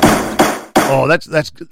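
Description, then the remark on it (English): Three sharp wooden knocks of a gavel banging in quick succession, loud, with a person's voice starting up right after the last strike. “That's called gavel time.”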